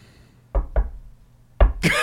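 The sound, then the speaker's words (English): Sharp knocks on wood in a one-two-one signal pattern: two quick raps, a short pause, then another knock, followed by a brief burst of louder sound. Fairly loud. “The knock is this.”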